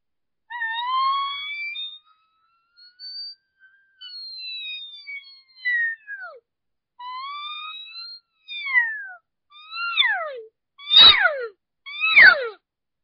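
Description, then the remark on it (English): An elk call blown on a diaphragm reed: a string of high, nasal whistling mews that bend up and down, ending in two louder, raspy squealing blasts. No one speaks. “And then once you start hissing, that tone will go up higher and higher.”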